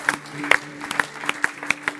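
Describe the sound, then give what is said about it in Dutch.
Audience applause for the band, heard as a scattering of sharp, uneven claps, roughly four per second, against a low steady hum, with no voices. “And while you're doing that, why don't we just put our hands together also for the band.”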